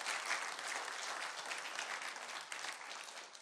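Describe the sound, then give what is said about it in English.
A church audience gives God a hand clap of praise for His work at Teen Challenge, a dense wash of many hands beating at once, loud and even throughout with no voices standing out. “Let's give God a hand clap of praise for what he's doing at Teen Challenge.”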